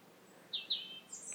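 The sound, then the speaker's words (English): A European robin sings a few short, high, thin notes: two quick sweeping phrases, then a higher trill, faint against a quiet outdoor background. “They're the sort of ubiquitous bird, aren't they? They're the bird that even the smallest kid can draw.”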